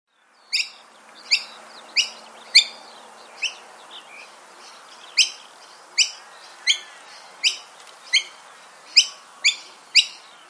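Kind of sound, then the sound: bird, noisy miner calls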